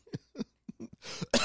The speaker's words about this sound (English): Sorry. Right, that's coughing. Oh, jeez.